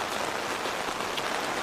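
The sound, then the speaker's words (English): Dense, steady patter of heavy rain drumming on an umbrella as people arrive for an evening concert, a continuous crackling drumming with no pauses and no voices. “Sounds like someone's playing the drums on your umbrella there”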